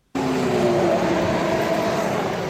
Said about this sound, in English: The roar of the engines and the smell of the exhaust is what Formula One is all about for many fans.